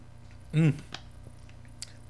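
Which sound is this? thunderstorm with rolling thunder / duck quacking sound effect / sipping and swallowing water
sipping and swallowing water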